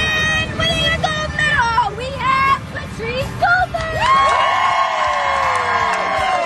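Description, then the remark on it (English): A crowd at a Special Olympics medal ceremony cheers and shouts excitedly for the athletes, with high whoops and children's voices rising over dense babble, swelling into a sustained roar of loud, applause-like cheering toward the end. “The pure joy on the faces of the athletes, the cheering, it'll make you feel good all day.”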